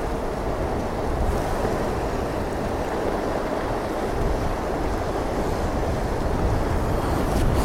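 Steady ocean surf washes continuously with gusty wind buffeting across it, a dense, even roar that never lets up for the whole stretch, with no voices present.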